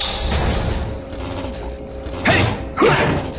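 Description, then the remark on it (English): A heavy, rusty metal garage door at a shipping dock rattles and grinds steadily along its track as Batman opens it, then two louder clanking jolts with squealing creaks near the end. He kicks the door a couple of times to loosen rust from the track. No voices. “He has to kick it a couple of times to loosen the rust from the track. There we go. But it opens”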